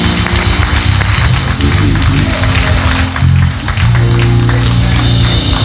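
An audience in a church in Charlotte claps their hands in praise of God, a dense, continuous wash of applause, loud and steady throughout, layered over sustained low musical tones that shift pitch.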